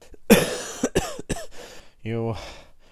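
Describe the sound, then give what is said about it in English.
A man sits back and has a burst of harsh coughing: several rough hacks in quick succession, followed by a strained, voiced groan as the fit subsides. “He sat back, coughing.”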